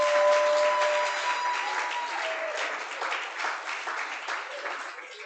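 A church audience applauds steadily during a sermon, a dense wash of many hands clapping at once that holds strong and then thins slightly toward the end, with no voices standing out.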